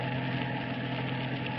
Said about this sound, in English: It is early afternoon, and a young boy and girl are riding along the river road in a brand new convertible.